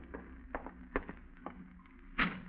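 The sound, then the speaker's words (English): Several sharp, hollow knocks at a door land in an uneven rhythm, then one louder, fuller thud near the end. No one speaks, and there is only a faint hum between the knocks. “An hour later, you're startled by a knock at your door.”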